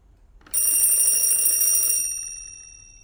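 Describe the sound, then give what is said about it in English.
A telephone rings once, a bright, metallic bell trill starting abruptly and holding steady for about a second and a half before fading away, with no voices. “Barlow residents, please don't tell me this is another call from Mexico.”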